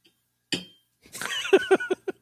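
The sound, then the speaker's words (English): A sharp glassy clink, then a quick run of four or five ringing taps of a glass against a Woodenville Whiskey Company bottle, fairly loud, with a bright tone lingering between hits. “I banged it on the Woodenville bottle.”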